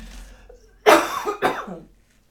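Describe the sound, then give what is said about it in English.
Two sharp coughs in quick succession, the first louder and longer, the second shorter, with no talking around them. “Hold on for the cough.”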